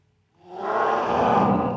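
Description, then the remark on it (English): A voice imitates a dragon's roar: one sustained, growling bellow that swells in after a short silence and holds loud and raspy for over a second. “Roar.”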